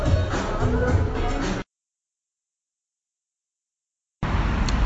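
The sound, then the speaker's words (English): Steady outdoor street noise in Las Vegas in January, partly cloudy at about 68 degrees, with a broad rumble of passing traffic, cut by a sudden gap of complete silence before the same ambient traffic wash returns at moderate loudness. “I'm outside now. No music, just traffic.”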